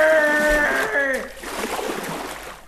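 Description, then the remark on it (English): A drawn-out, wavering call rings out, then gives way to a steady wash of splashing, churning water as a pedalo is pedalled out into the Caribbean Sea off St Lucia by cricketer Andrew Flintoff, moderately loud. “Lucia, all-rounder Andrew Flintoff lost control of his faculties and hijacked a pedalo, pedalling miles out into the Caribbean Sea in search of Ian Botham.”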